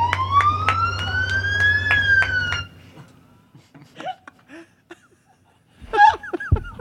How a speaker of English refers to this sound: Our siren, when you hear this siren, it says, you're going to get some hugs from the LAPD.